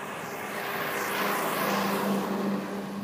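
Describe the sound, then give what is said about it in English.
A garbage truck rumbles past in the countryside, its heavy engine droning steadily and swelling louder toward the middle before easing off, with no voices. “Here comes the big truck.”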